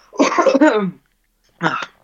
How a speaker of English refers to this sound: All right, so I've got a coughing coming.